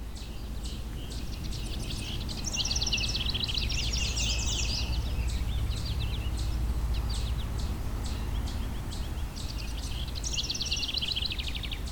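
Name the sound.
house wren song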